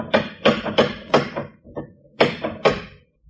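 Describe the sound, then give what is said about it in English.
Loud, heavy knocking on a door: a rapid series of four hard raps, a short pause with a lighter tap, then two more forceful knocks, resonant with no voices. “You could have heard that last knock out of the pheromone.”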